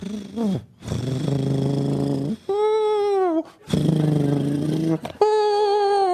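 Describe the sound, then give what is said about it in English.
A human voice imitating a sleeping cat: low, buzzing purr-like breaths alternate with higher, whining sighs, repeating twice in a steady rhythm, with no words spoken. “It is in the animal world. That was a sleeping cat.”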